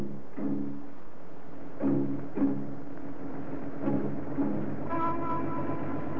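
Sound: train running on rails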